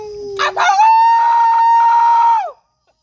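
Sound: dog howling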